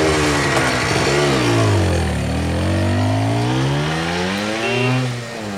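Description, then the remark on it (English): A Vespa motor scooter engine revs up, its pitch climbing and dipping through a couple of throttle bursts before settling into a steady drone as it pulls away, riding out of the woods. “revved up on his Vespa, and he and Cottle trundled out of the woods back to Mount Idol”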